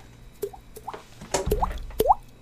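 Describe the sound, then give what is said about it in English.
A voice imitates water dripping from the ceiling with a series of wet, hollow plops made by the mouth, about five of them at irregular spacing, clear against a quiet background. “like, dripping from the ceiling”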